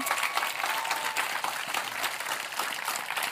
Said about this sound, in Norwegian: Men så tenker jeg at det veldig viktig at vi nå har fått en mannlig generalsekretær også, for første gang på 14 år. Det kan vi også gi en applaus for, ja.